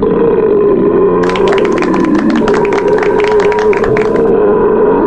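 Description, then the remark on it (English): A long, loud belch rumbles on for about five seconds, with a rapid rattling, crackly texture through its middle section. No one talks. “when you were first creating the signature belching sounds, why does number four have an angel heavenly chorus and number five doesn't?”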